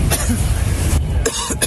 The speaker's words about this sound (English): These gray firefighters take cover inside a vehicle as the winds whip up the inferno. You see the flames moving closer. Inside the vehicle, the men can be heard coughing.